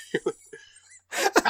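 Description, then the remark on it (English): A person fakes a cough after taking a swig from a jug: two or three short, quiet hacks, then a brief pause and a louder, rougher burst of coughing, with no talking. “takes another swig and coughs again and then just hands the jug to the giant French guy.”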